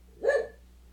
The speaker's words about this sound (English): Oh, joy, if it's not the clock, it's the dog.